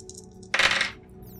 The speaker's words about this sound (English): That's a 7 on the action die, and a 3 and an 8 on the challenge dice for a weak hit.